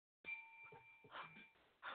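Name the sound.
hand bell ringing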